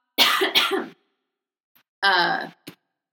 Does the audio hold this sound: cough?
yes